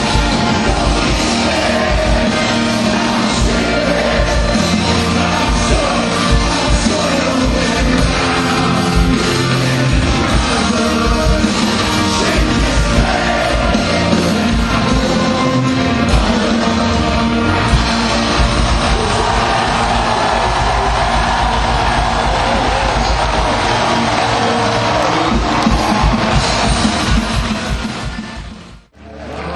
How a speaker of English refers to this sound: and a lot of people here, and they're going crazy, as you can tell by the music. This crowd knows their music, and they're singing along.